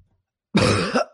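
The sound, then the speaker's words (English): A voice performs a rough, wet cough as if coughing up blood midair, a single harsh burst that rises abruptly from silence, strains for a moment, then breaks off with a brief catch at the end. “Coughing up blood midair.”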